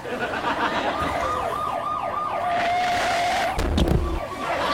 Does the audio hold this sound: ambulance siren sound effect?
yes